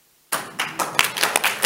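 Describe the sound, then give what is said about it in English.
A group claps together for Jesus after a brief silence, a dense burst of sharp hand claps with irregular louder peaks, sustained and fairly loud, with no voices over it. “can we clap for Jesus?”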